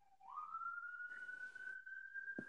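A siren going off in the background rises in pitch and then holds a steady high wail, faint and continuous, with no one talking over it.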